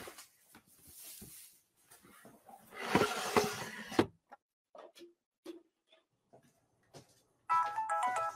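A mobile phone ringtone starts up near the end, a bright melodic electronic tune repeating its notes, following rustling and clattering sounds of someone putting clothes away into drawers.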